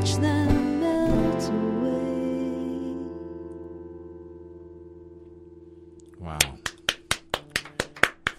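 A lingering musical chord fades away, then a lone person claps their hands about nine times in a steady, moderately paced rhythm, crisp and close by.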